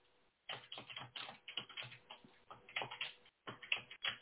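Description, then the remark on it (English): Rapid, uneven clicking of keys on a computer keyboard in continuous bursts with a couple of brief pauses, no voices present. “I'm just typing this out.”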